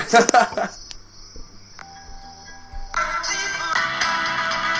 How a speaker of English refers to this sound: Wow. Literally crickets. That's good. Literally crickets.